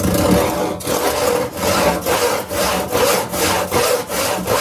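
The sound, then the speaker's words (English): Animal rescue volunteers in Kaohsiung use a hand saw to cut through a pipe that is too small for a trapped puppy to fall out of. Steady back-and-forth strokes make a loud, rasping scrape about twice a second, with no voices. “So they had no choice but to use a saw and cut through the pipe.”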